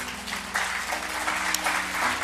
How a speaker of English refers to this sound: As they come, maybe you'd give them a round of applause.